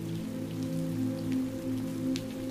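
rain falling

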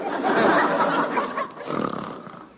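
man snoring

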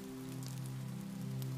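rain falling

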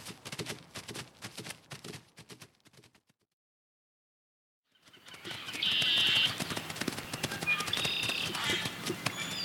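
horse hooves clip-clopping

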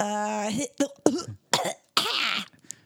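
cough

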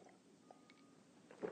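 sipping coffee

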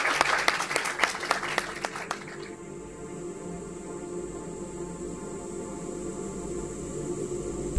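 audience round of applause

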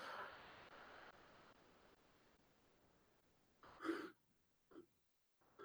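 yawn

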